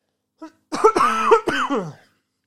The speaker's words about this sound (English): Hold on. Another cough.